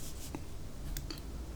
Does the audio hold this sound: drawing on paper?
yes